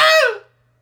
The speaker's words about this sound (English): And let's push them out in the form of a cathartic scream. Join in with us, everybody, after a three count. Here we go. In 3, 2, 1. Yeah!